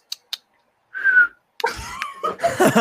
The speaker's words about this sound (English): You can't whistle, you can't whistle, can he? You can't like, whistle.